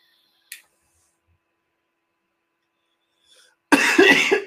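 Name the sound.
coughing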